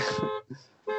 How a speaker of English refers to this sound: I'm in my buddy's car and I said, I was going to say the van's horn works. Yeah, no, I'm not in, I'm in a Tesla.